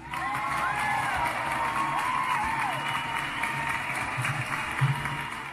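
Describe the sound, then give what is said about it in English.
A crowd cheers and whoops steadily for several seconds, a dense wash of voices with scattered shouts rising above it, fairly loud and continuous throughout. “Let me get a applaud for that if you agree, homie.”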